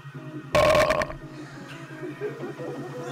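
A loud, rough burp lasting about half a second bursts out over a steady, pulsing low electronic beat, which keeps going quietly afterward.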